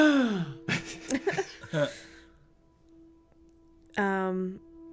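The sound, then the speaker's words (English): A voice imitates a startled gasp for breath, with a run of breathy, strained vocal sounds, then a pause and one more sharp voiced gasp near the end. “gasped for breath”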